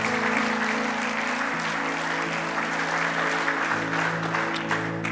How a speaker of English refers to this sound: Give the Lord a clap of praise this morning.